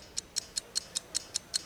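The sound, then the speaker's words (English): A ticking 60-second countdown clock during a quiz round, eight crisp, bright ticks evenly spaced about every fifth of a second, steady over a quiet background with no voices. “60 seconds on the clock.”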